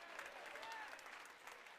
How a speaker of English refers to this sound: Clap your hands and give God some praise.